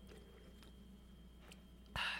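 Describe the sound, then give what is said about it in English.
A quiet stretch with low hum and a few faint clicks, then a single short slurping sip of a fizzy, strawberry-flavoured sparkling margarita near the end. No one speaks. “Let's give this a sip.”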